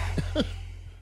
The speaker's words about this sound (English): take a deep breath. Let me just clear my throat for this one.